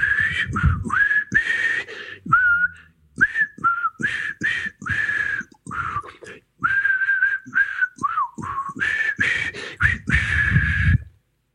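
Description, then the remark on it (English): A person whistles a wandering tune, the notes sliding and breaking into short phrases with brief pauses, accompanied by breathy noise and occasional soft knocks. “I would have to say, and I'd like you to debate this with me now, is it possible to actually whistle out of tune?”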